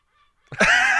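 A loud, harsh seagull squawk bursts in after a faint, thin call, a single sustained raucous cry with no talking.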